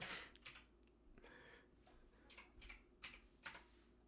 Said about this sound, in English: Did you just Google it? Is that what I can hear you typing? Stop that. Yes, I did.